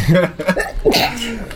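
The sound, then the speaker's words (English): A short, sharp sneeze-like burst breaks out in the middle of close, voiced vocal sounds, hissy and loud for a moment before trailing off into murmuring. “Bless you. I guess.”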